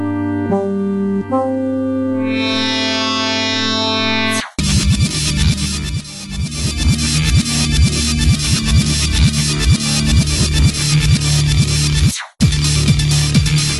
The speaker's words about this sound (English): A track that brings out a lot of memories from me, that's Medusa Bay from Echo the Dolphin.